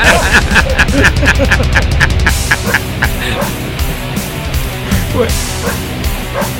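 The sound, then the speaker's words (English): A dog's barks serve as the lead vocal of a loud song, firing in a quick rhythmic run of short yaps before thinning out into scattered barks over the steady backing music. “What is that? It's a dog.”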